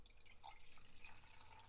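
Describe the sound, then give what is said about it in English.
Water trickles and drips from a pour-over coffee maker as morning coffee is made, a soft, steady stream with faint plinks of drops. Quiet, with no voices. “Sometimes I don't have it before the stream, but I'm going to have it now. I like to do the pour over.”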